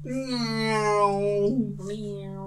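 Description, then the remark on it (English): A person imitates a cat with a long, drawn-out meow, held steady before breaking into a shorter second mew, clear with no other sounds. “Meow.”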